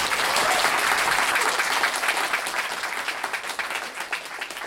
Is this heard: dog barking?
no